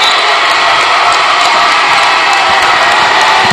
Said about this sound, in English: I'd say the Forest Hills crowd is celebrating. Good basketball game.